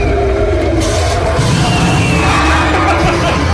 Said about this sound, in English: This is a clip from Global. You can hear the thing just roaring, like blowing fire, and children screaming.